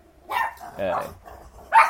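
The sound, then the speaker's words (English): Puppies bark in short, sharp bursts, three or four yaps spaced unevenly over a couple of seconds, loud, with a faint voice murmuring in the background. “And the puppies barking crazy again.”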